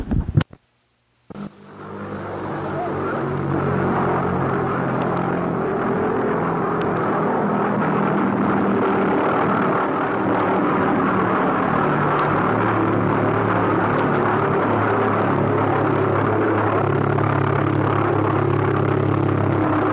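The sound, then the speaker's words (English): A flying bomb's engine drones as it flies over a house, a loud, steady, rough buzz with a low throbbing pitch, holding for nearly twenty seconds after a brief sound and a moment of silence. “this thing's like a huge bomb flying over somebody's house”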